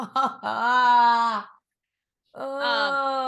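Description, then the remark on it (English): A voice imitates an eerie, ghostly wail in two drawn-out, quavering cries separated by a short silence, fairly loud, with no words. “And so she either emits the cries of infants or feminine laughter”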